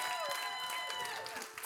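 A church audience claps together in a steady, dense patter of applause for a member finishing four years on the church's governing board, with a few faint voices mixed into the crowd noise.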